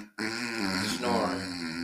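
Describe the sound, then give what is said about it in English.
A person fakes a snore with a single long, raspy, throaty rumble that buzzes steadily for nearly two seconds after a brief silent pause, fairly loud and with no other voices. “Snoring.”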